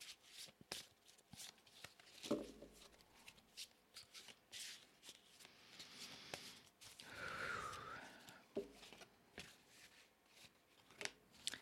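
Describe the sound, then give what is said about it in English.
A deck of goddess cards being shuffled before a card is drawn, a steady run of soft papery riffles and slaps, with a longer rustling flurry in the middle and a few sharper clicks, quiet and with no voices. “So I'm just going to take a minute here and shuffle the cards.”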